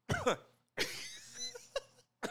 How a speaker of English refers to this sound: So sorry for that. Can you stop coughing into the mic? Just cough the other way.